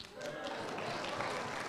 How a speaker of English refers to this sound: I didn't expect applause.